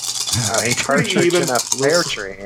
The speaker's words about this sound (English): It's a dice pool right there.